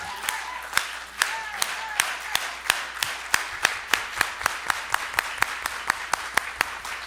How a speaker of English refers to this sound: Yeah, let's give him applause. Give applause.